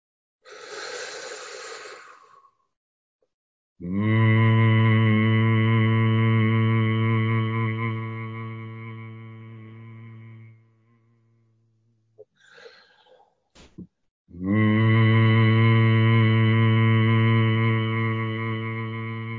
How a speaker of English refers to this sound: And we'll amplify that by using a very gentle hum through the heart.